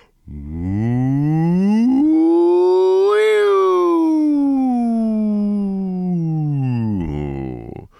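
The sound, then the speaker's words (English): A single sustained vocal siren done as a voice warm-up: one voice glides smoothly from a low pitch up to a high peak, then slides back down, held steadily for about eight seconds with no words. “So to start our warm up, we're going to do a quick siren like this.”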